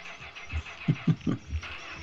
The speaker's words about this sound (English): Now don't flood it. Oh no, the car doesn't start.